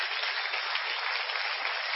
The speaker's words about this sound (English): Oh, we have someone. Awesome. Let's cheer them right now. We got some.